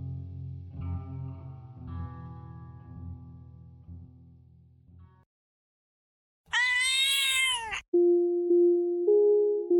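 A single loud, drawn-out black cat meow rises and falls after a brief silence, set between buzzing electronic drones that sound distorted and processed. No one speaks.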